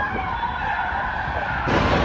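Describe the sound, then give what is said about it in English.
A teen driver floors a stolen car: the engine roars under hard acceleration while tires squeal and skid in a loud, continuous screech that surges even louder near the end. “And watch as the teen behind the wheel floors the stolen car.”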